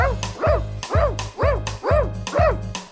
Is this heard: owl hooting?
no